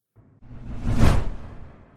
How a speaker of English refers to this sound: we're going to swoosh you back out. Thanks so much for popping into the stream and sharing some of your POV here today.